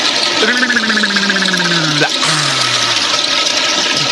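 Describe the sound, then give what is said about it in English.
A toilet flushes with a loud, steady rush of water, while two low, wavering tones slide downward through the torrent like a gurgling drain. “Stick his head in the toilet. And flush.”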